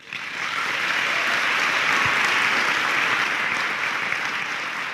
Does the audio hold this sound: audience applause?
yes